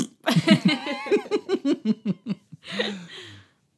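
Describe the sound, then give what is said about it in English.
A run of rhythmic, laugh-like voiced bursts, then a short, buzzy, breathy blurt resembling a fart sound effect, apparently produced by a voice imitating it, moderately loud. “what's a cool sound effect from spookies that we can use whenever we say spooky? The farting sound”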